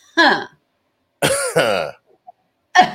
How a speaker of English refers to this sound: Okay, so talking about keys, everybody get your car key, right? Put it in your laughter engine and just turn it over. Just make a little cough like this.